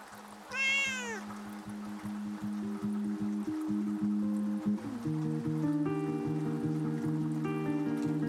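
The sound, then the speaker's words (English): Many cats: a loud meow rises and falls near the start, followed by steady, sustained tones that hum on for several seconds. No one speaks. “What the fuck am I supposed to do with all these cats?”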